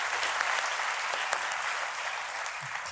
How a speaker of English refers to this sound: I just wanted slightly more applause for The Big Sick than male stripping. And I feel like I pulled that off.